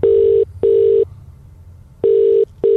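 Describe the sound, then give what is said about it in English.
Telephone dialing tones as someone makes a phone call: a steady, mid-pitched electronic tone pulsing in paired bursts, two short beeps, a pause, then another pair beginning, loud and clear with no talking. “Should we ring some phone calls? Make some phone calls.”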